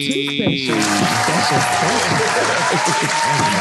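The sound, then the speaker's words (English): Loud, steady applause in North Las Vegas, a dense wash of clapping with voices cheering and talking over it for the whole stretch. “Did you get the applause? I heard the applause.”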